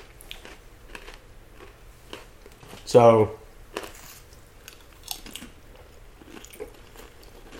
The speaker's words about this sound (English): Sorry about the loud pretzel chewing.